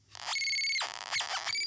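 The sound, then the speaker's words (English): A cricket noisemaker toy chirps loudly in a studio during a live recording, in three shrill, high-pitched bursts: a long sustained trill first, then a brief chirp and a final short burst, with no talking. “I've got, check this out, crickets. That's really loud.”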